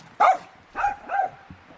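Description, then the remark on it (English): A male dog at a farmhouse gives three short barks, a sharp one followed by two softer, whiny yelps spaced about half a second apart, with no talking. “Yes, hello, dog.”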